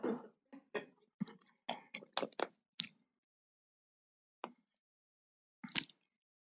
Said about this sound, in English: I'm just going to have a sip of water here. I hope it doesn't upset things.